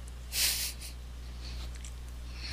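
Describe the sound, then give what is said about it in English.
One sharp, breathy nasal exhale hisses loudly into the mic, followed by a few fainter airy breaths over a steady low hum. No one speaks. “I could hear you breathing.”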